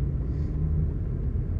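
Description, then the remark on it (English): A steady, low engine rumble fills the space, the muffled drone of a truck heard from inside the cab, continuous and fairly loud with no other sounds. “Sorry, I'm in my truck, so it's going to be a little bit noisy in the background.”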